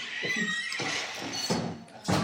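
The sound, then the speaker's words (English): A door swinging shut, with a creaky, strained groan over a steady hiss and several soft, evenly spaced knocks, ending in a firmer thud. No one speaks. “Door's closing.”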